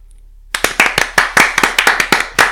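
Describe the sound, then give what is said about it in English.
A brief round of applause celebrating someone's new job starts abruptly after a moment of silence, with a few pairs of hands clapping in quick, uneven bursts that stay loud and bright until it cuts off. “Can we have a round of applause, everybody, please?”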